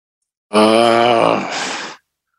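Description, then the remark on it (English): A voice imitates whooping cough as a clue in a team quiz about a disease in 1832: one loud, strained, drawn-out vocal whoop that breaks into a raspy, breathy rasp before stopping abruptly after about a second and a half. “Whooping cough.”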